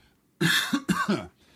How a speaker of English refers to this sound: I'm still coughing, you know?